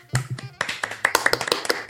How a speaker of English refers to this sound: I'm clapping for myself.